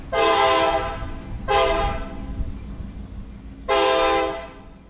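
A train rumbles steadily past, loud, while its horn sounds three long blasts: two near the start, then one more after a pause. No voices.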